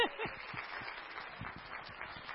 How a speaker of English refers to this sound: Let's clap for our preschoolers.